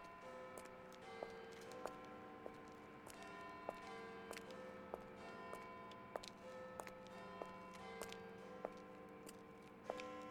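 A clock ticks steadily while ringing chime tones hang in the air, their bell-like overtones sustaining throughout; no voices, just the even tick beneath the resonant chiming.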